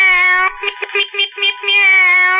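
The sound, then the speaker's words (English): A voice imitating a cat's meow, played as a sound effect: one long, loud, high-pitched meow that wavers and stutters in the middle before stretching out again, heard alone with no talking. “Your air horn is you saying the word meow, or was that someone else?”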